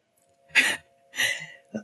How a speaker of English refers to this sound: I'm so sorry I'm coughing, guys. My allergies. I don't have the I don't have Ebola over here. I just have my allergies. The pollen count is something crazy in DMV right now.